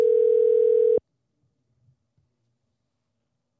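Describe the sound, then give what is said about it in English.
A steady, loud telephone dial tone as a phone call is placed holds one mid-pitched note for about a second, then cuts off abruptly, followed by near silence with a few faint soft clicks. “I think we should give Damian a call.”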